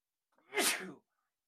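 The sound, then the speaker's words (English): A single sneeze, slightly distant and muffled as if turned away, with a short breathy intake before a bright burst lasting under a second, then silence. “I got to sneeze. I'm sorry. Hold on. Let me get away from the microphone.”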